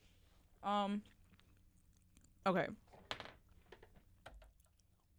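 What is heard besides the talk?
loud chewing of food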